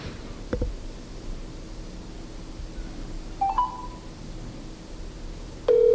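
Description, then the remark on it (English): A phone call connecting: a click, a few short electronic tones partway through, then a steady ringback tone starting near the end over a low background hiss. “And we're ringing.”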